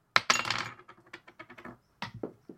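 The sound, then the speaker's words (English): Dice clatter and tumble across a hard tabletop during a tabletop role-playing game, rolled for a check to open a door, a burst of sharp clicking bounces that fade into a few scattered taps as they settle, fairly loud. “That was the worst dice roll I've ever fucking Let's seen.”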